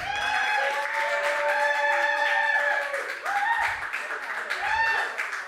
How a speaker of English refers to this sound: Lukewarm motherfuckers. We're going to do that again. Yeah. Now you have to make a decision in your heart and clap real loud.